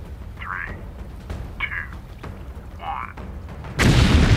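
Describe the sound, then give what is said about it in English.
A low, steady rumble with a few faint chirping tones gives way near the end to a sudden, loud explosion of an offshore platform being deliberately blown up, heard from a few miles away, that swells into a sustained, roaring wash of noise. “We just saw this big explosion.”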